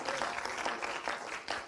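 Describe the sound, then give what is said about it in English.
A crowd claps together in dense, sustained applause as a hand clap of praise to the Lord during a morning service, the many overlapping hand claps forming a steady wash of sound with slight surges, no voices standing out. “Before we take a seat, why don't we one more time lift up a hand clap of praise to the Lord this morning.”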